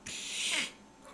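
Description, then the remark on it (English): A person voices a short, breathy imitation of a dog howl, a single cry lasting about half a second that slides downward in pitch before cutting off, with no talking around it. “I actually shouldn't have done that, because actually my sister's dog probably just thought I was another dog”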